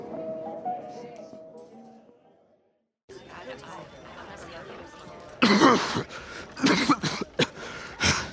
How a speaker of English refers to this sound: Ain't nothing that can cure me of this dang blasted cough.